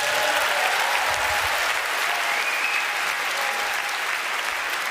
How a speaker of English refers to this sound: Thank you very much. A big round of applause for the Toronto Police Services this evening. Fabulous job.